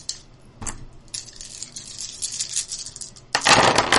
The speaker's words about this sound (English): Okay. Here. All right. So now you get to roll all of your dice.